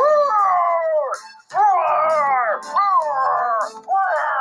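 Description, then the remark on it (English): A voice imitates a dragon's roar with loud, drawn-out, wavering howls, broken by a brief pause and a couple of quick breaths between bursts. “Yeah, he's got a big deep voice, and he's got a big roar.”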